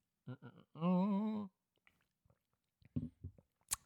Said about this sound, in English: Let me have a sip of water.